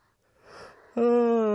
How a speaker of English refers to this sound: Oh, big yawn. Oh, it's almost bedtime.